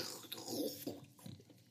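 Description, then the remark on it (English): A soft kissing smack with wet mouth noises as a woman kisses a man on the lips, lasting only a moment against a quiet background, with no talking. “She lands a big smack on his lips.”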